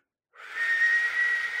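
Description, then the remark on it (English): A breathy, airy attempt at whistling by a person who cannot whistle, mostly rushing air with a thin, faint tone wavering through it, held steadily for over a second after a brief silence, with no talking. “Here's my best whistle.”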